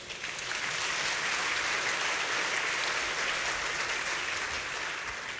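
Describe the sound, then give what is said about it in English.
A crowd applauds steadily, a dense wash of many hands clapping at once that holds fairly loud and even for several seconds, with no one speaking over it. “I wouldn't get the same applause for letting on my age, but they're not going to know that anyway.”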